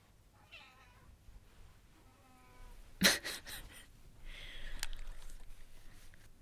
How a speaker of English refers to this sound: If you hear my cat, I apologize. I can't lock her out of the room because she just scratches at the door, which actually makes more noise. So if you hear a cat, just say, hi,